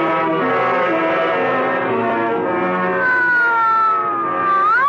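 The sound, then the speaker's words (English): A police squad car's siren wails loudly and continuously as it races through a city, its rich, harmonic tone slowly sliding downward in pitch before sweeping back up at the end. “Squad car stabs, tears, ripped through a city, and its wail is like a piece of broken glass that splashes across its face.”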